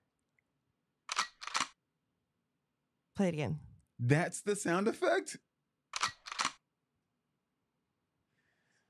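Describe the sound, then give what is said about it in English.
A gun cocking sound effect, a sharp two-part metallic click-clack, plays once, a voice speaks briefly, and then the same double click repeats. “I mean, it's obviously a gun cocking, but I don't know.”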